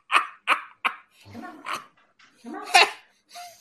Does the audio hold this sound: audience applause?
no